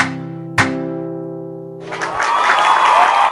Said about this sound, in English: Vỗ tay. Clap hands.